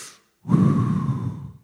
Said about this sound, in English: Someone else, there's a lung issue right now. You've got like a breathing issue. I just want you to do something. Put your hand where your lungs are and just start to take a deep breath.